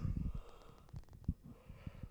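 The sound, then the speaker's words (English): A breathy yawn with a few snorting, gasping exhalations in short bursts, heard alone without any talking. “But I'm like, as soon as I sit down to do a podcast, I start fucking yawning.”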